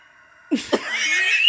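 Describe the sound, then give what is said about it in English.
A neighbor's rooster crows at 10:30 in the morning: two short, throaty bursts lead into a drawn-out, strained high call that holds steady to the end, fairly loud with no one talking over it. “Why is the rooster he's been just doing now?”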